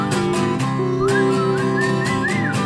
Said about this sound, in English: There goes that bird again.